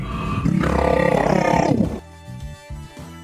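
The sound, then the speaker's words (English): A black swan monster, taking 11 points of damage as part of its skull is ripped off, yells out in pain: a loud, rasping roar that swells and holds for about two seconds, harsh and gravelly, then cuts off as quieter voices talk briefly. “The black swan yells out in pain.”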